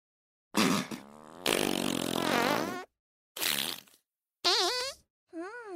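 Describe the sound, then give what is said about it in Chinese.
A series of loud farts, about five bursts of varying length, with one long sputtering, wavering blast and several shorter buzzy ones separated by brief silences. No talking. “学妹，你为什么会喜欢我放屁啊？”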